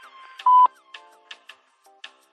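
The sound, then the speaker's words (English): An answering machine beep after a recorded voicemail greeting: one loud, steady mid-pitched tone lasting a fraction of a second, surrounded by a handful of sharp clicks and faint lingering electronic tones, with no talking. “After the beep, leave a message with your name, number, and your question.”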